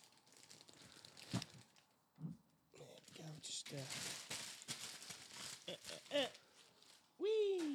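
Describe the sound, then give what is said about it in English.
Kids' wrapping paper crinkles and tears as a gift, a black T-shirt, is unwrapped, with bursts of loud rustling throughout and a brief vocal exclamation at the very end. “So he's wrapped it up in kids' thing. It's like it's Paw Patrol. Wrapping paper.”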